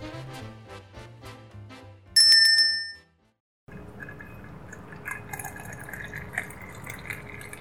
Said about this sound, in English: If you close your eyes, you can hear the bell jingle even now.